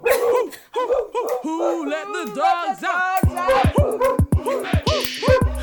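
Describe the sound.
Voices imitate a dog barking, giving a quick rhythmic run of loud, short woofs over a music track with a steady bass line. Chanting voices come before the barks.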